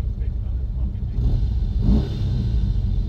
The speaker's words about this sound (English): There's some motorcycles behind me.